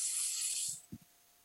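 Meat sizzles in a bright, steady, crackling hiss for just under a second, then falls away, leaving a couple of soft low knocks. No one speaks.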